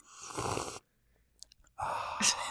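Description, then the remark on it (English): Two airy slurps of someone sipping hot tea from a cup, separated by a brief pause with faint swallowing clicks; no talking. “There's going to be lots of sipping on this podcast.”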